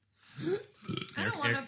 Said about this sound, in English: Sorry, I'm burping. Okay.